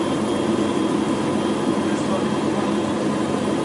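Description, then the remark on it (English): A steady ambient machinery hum inside the U.S. lab on the International Space Station, recorded by Commander Chris Hadfield: a dense, unbroken whir of fans and equipment that holds one even, fairly loud level throughout, with no distinct events. “This is what normal life sounds like in space.”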